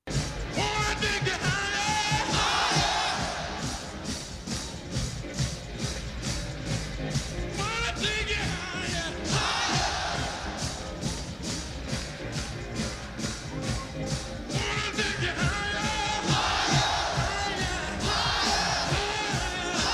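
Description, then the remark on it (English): A huge crowd of about 500,000 people at a soul revue show sings and cheers over loud live music, the roar swelling in repeated waves of yells and whoops that rise and fall every few seconds. “It is the most perfect soul review show and gets 500,000 people singing”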